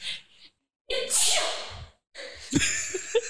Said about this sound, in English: Sorry, I had to wheel away to sneeze.